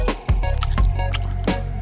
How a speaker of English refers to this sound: Everyone, take right a chew. Into the mic. Okay. No, we're going to chew it into the mic, not the plastic. No, and the plastic. Hey, whatever. So chewy. Chew, chew.